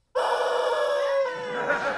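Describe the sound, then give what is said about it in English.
A squeezed rubber toy chicken lets out one long, loud, buzzy wail that starts abruptly and holds a fairly steady, reedy pitch, wavering slightly near the end, with no talking. “Here, squeeze my chicken.”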